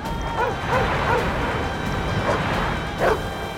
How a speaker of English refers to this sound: He could hear a dog barking somewhere nearby.